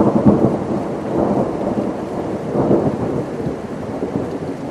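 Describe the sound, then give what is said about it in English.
Heavy rain pours steadily at night while deep thunder rumbles in rolling waves, swelling and fading several times. The storm is loud, with no voices. “That night, there was a great storm, and the twisted old tree fell into the forest with a loud thud that sounded like a clap of thunder.”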